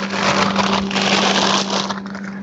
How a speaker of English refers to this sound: They're frozen. That was me going in the freezer.